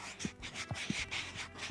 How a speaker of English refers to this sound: But you, paper fetishists that you are, I invite you to gather around the speakers and listen to the sound, the tensile sound of his paper.